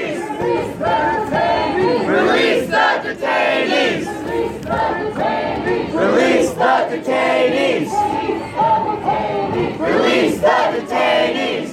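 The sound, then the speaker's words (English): A large protest crowd chants and cheers loudly and continuously, voices rising in rhythmic shouted bursts over a dense roar of many people, recorded on a phone by a participant. “I figured it might come in handy in showing, you know, what we were all cheering and chanting about.”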